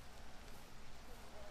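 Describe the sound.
Steady rain falls outdoors in a park in a continuous, dense hiss that holds an even level throughout, with faint voices murmuring underneath.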